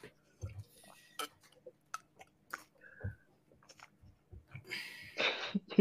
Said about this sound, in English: Sip.